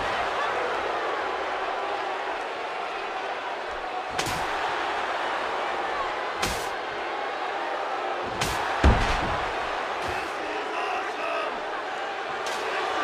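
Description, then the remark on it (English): In a wrestling match, Koloff wields a steel chair: it cracks sharply against a body several times, about four loud, sudden impacts spaced a couple of seconds apart, over a constant roar of a large crowd. “Koloff's got a chair. Oh!”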